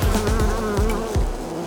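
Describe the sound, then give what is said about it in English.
A dense, steady buzz of thousands of honeybees humming together inside a hive as they make honey and honeycomb, fairly loud, with wavering drones and no voices. “Buzzing around, there are thousands of bees here to make honey, flying all over the ground, making honeycomb for their hexagonal home.”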